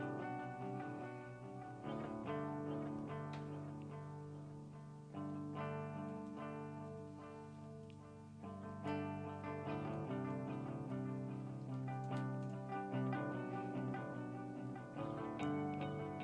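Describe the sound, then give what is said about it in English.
Dense, effects-laden electric guitar chords ring out in a steady, loud song intro, thick with chorus and distortion, strummed continuously with a few sharper accents and no voices. “The guitar work remains off the charts, however.”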